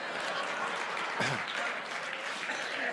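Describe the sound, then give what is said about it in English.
A crowd applauds in a steady, dense wash of clapping that holds at an even level for the whole stretch, with a brief voice or shout rising through it midway. “No, you weren't supposed to clap at that point.”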